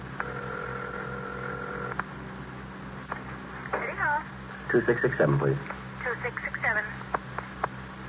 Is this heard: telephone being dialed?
yes